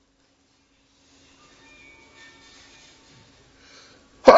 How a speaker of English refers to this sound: That was perfect timing. Thank you for covering up my sneeze. That was very thoughtful.